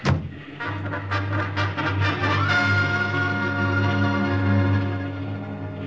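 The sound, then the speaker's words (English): A motorcycle engine roars loudly and steadily with a deep drone as it is chased by a car through enemy-held territory. There are choppy revving bursts early on, then a rising whine as it speeds up; no voices. “That motorcycle ride through enemy-held territory with that car full of Nazis firing at me was wilder than the stories in the comic books I used to draw for.”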